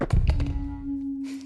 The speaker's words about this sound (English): Wow, that was a mic drop.